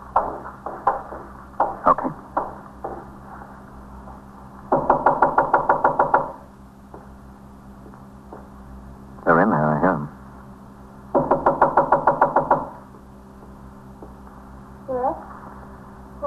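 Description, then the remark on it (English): A police officer knocks on a front door: three bursts of rapid, firm knocking, each a quick run of sharp raps, separated by pauses, with faint muffled voices and a low background hum. “Open the door. I'm a police officer.”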